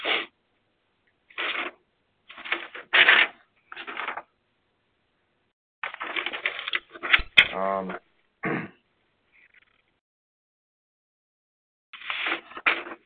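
Paper rustles and crinkles in a series of short, scratchy bursts, separated by brief pauses of quiet, with one squeaky, tonal moment partway through.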